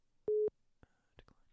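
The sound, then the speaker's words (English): A cell phone rings with an incoming call from a spam caller during a recording: one short, loud, steady electronic beep, followed by faint clicks, rustling and soft whisper-like noises. “There was a spammer calling my fucking cell phone as we were recording.”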